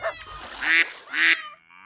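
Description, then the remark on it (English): Two loud, nasal duck quacks ring out, a short pause between them, followed by quiet with a faint, fading tail. “So off she went and bought some ducks, and she put them in the pond beside her garden, and those ducks splished and sploshed and made a loud quack, quack, quack, quack, quack.”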